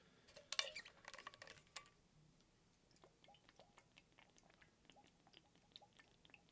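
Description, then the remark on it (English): Someone sips water: a brief clink and rustle at the start, then quiet, wet mouth clicks and small swallowing sounds with no talking. “So let me get a sip of water.”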